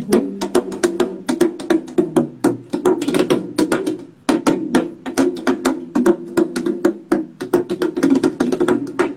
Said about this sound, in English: There are instruments like, which, there's this instrument which is made of clay. It has this skin over here. And over the phone, maybe you won't get the sound right, but.